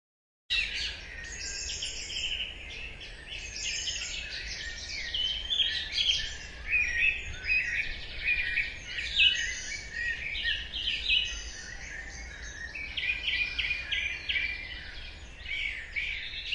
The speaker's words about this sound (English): May is the month when, arguably, the dawn chorus of birdsong is at its finest.